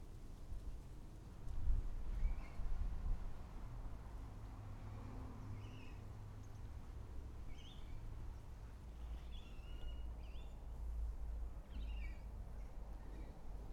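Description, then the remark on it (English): Steady outdoor ambience recorded on a Roland R07 recorder, with a low, rumbling background, while faint bird chirps come and go sporadically over the top. No one speaks. “We don't have quite as much bird life as I did a few minutes ago, but it should give you a little bit of an idea of ambient sound.”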